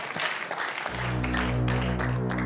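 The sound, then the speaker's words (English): A crowd claps hands in a dense, continuous patter, and partway through a steady low organ-like hum with a sustained chord swells in beneath the applause. “Clap your hands.”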